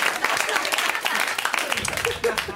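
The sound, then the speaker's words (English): An audience at a show claps steadily for a few seconds, a dense, crackling wash of many hands at a moderate, even level, with some murmuring voices mixed in toward the end. “This is where you clap, white people.”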